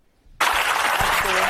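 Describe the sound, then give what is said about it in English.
After a brief quiet moment, loud applause from an audience bursts in and holds steady as a dense, continuous wash of clapping until the end. “And why are they applauding that? They got their clapping seals in the audience.”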